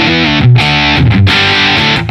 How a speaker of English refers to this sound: But if I play it hard, I also can do things like add a distortion to this. So that's like, you know, a little bit of a grit, sort of almost broken up clean sound. Here's my crunchy sound.